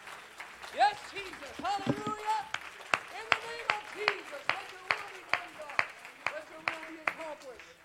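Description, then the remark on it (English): An audience claps their hands to the Lord in praise, in steady unison, sharp rhythmic claps about twice per second, while raised voices call out and sing over them, louder at the start. “Clap your hands to the Lord and let's give him praise.”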